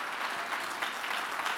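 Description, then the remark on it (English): A crowd claps steadily to thank God, a dense wash of many hands striking at once, sustained and even in loudness without a break or any voices over it. “Oh, clap your hands and thank God that he leads us through his peace.”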